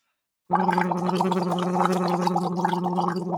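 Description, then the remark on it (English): A steady hum is voiced while air bubbles through a straw placed about 1 to 2 inches into water, demonstrating a voice exercise, the bubbling crackle running unbroken over the low tone. It starts suddenly after a brief silence and stays loud and even throughout. “So you're humming and blowing bubbles at the same time.”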